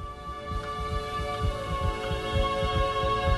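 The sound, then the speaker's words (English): A doubled heartbeat from someone with two hearts: low, muffled thumps arrive in quick pairs, two rhythms overlapping, over a steady electronic hum. “You have two hearts.”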